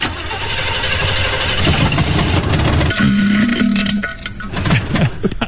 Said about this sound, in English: Can I start the car and you can kind of tell me how what it sounds like to you?